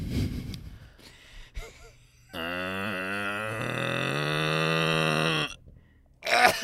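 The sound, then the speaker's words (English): A person imitates a cow's moo with one long, sustained, droning vocal sound lasting about three seconds, preceded by a short breath and followed by another sharp breath or gasp. “Yeah, when I was a kid I was a god at doing cow moos, but then I started smoking and it really like messed that up, but let's see if I can still do it.”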